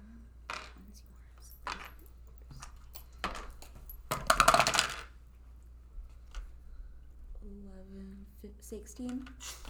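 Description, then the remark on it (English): Dice clatter onto a hard table: scattered sharp clicks, then a dense, loud rattle as several tumble together midway, with voices murmuring toward the end. “You got four more dice.”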